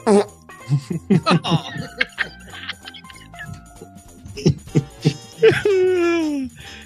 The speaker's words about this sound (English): Don't fart. Don't fart.